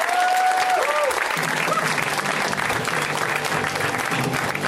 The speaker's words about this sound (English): Oh, so you guys started clapping in rhythm with the song. I fucking love when that happens. You guys are so in sync together.